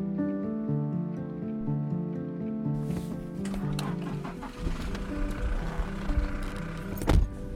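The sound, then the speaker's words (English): A steady engine drone and road rumble, heard from inside a moving car on a seven-hour journey that began on tarmac and ended on dusty roads with huge holes deep in a forest, with a louder bump and rattle near the end as the vehicle jolts over rough ground. “It was a long car journey, 7 hours.”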